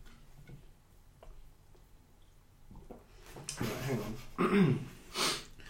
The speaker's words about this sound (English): Hang on. I just heard me gulp on the microphone there.